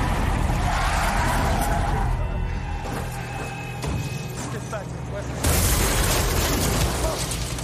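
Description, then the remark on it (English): A loud vehicle collision: a cement mixer slams into a police car with a roaring, crunching impact, then a second surge of grinding metal and rumble near the end. “Tom Cooper managed to pit maneuver this police car, and then this police car got absolutely creamed by a cement mixer”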